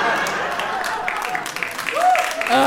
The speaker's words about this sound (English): Oh. Thank you. People are clapping at my frivolous spending. They're like, you go, girl. You earned it.